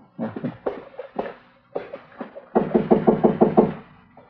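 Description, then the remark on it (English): Several bursts of knocking on a door, fairly loud, with irregular raps at first and then a steady run of about eight quick, firm knocks. No one speaks. “All right, go ahead and knock. Let's get clear before the door opens up.”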